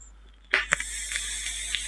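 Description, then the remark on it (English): A vape with a staggered fused Clapton coil fires with a sudden hissing sizzle, broken by a few sharp pops and crackles before settling into a steady, quieter hiss. No one speaks. “The crackle is terrifying. It's because I've got a staggered fused Clapton in there.”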